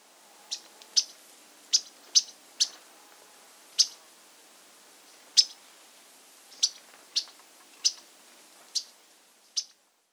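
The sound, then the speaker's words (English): An Audubon's yellow-rumped warbler gives sharp, sparse check call notes, about a dozen short high chips spaced unevenly over ten seconds, clear against a quiet background. “The most common call is a check call. Here is the Audubon version of this call.”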